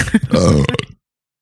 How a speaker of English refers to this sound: Good Lord. There are a lot of burps tonight, ladies and gentlemen.